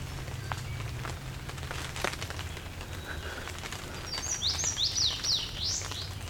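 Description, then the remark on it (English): Water drops blown off the trees by the wind patter irregularly, sharp little taps over a steady low wind rumble, while a bird's quick high chirping phrases enter near the end. “Some water drops being blown off the trees.”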